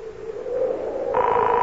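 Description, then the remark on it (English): A telephone ringing tone heard over the line of a call made from a payphone: a steady, fairly loud electronic hum that is soon joined by a brighter, higher tone, with no voices. “Ah, it's ringing.”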